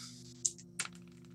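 Dice clatter briefly, giving two sharp, hard clicks about a third of a second apart, fairly quiet against a steady low background hum.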